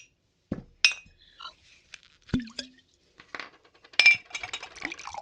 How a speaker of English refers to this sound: There's some scotch over there. Help yourself. Thanks. Hey, pour me one, too.